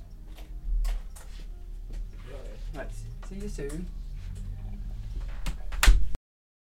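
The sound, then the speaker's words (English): Muffled voices and shuffling movement, then a single firm thud near the end as a door is pushed shut, followed by sudden silence. “I have to shut the door, because then otherwise we get extraneous sound.”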